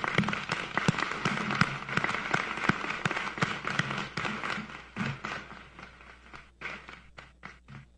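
A crowd applauds soldiers for their service with dense, steady clapping that thins out toward the end into a few scattered individual claps.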